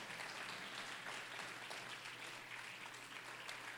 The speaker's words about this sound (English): Clap your hands and say amen.